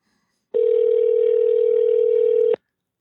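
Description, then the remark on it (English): A single ringback tone on an outgoing phone call to a friend: one steady, buzzy electronic ring lasting about two seconds, clear, with silence on either side and no voices. “so he's probably not available to answer his phone during the day.”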